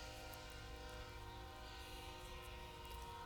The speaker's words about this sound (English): Just gonna let the train finish out there, okay.